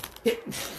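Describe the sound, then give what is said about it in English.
A single short sneeze bursts out abruptly, a brief voiced catch followed by a hissy, breathy release, then quiet background noise continues for the rest of the moment. “Bless you. Pardon me.”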